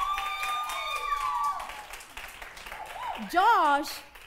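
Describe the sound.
An audience applauds steadily for several seconds as a person is called up to the front, with high whistles and excited whooping voices rising over the clapping and peaking loudest near the end.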